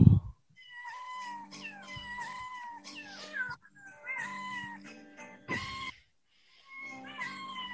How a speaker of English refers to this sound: Some of those cats had a little bit of in-house sweetening, you can tell. Oh, yeah. Okay. They were definitely doing the … Wolf Sound stuff on those cats.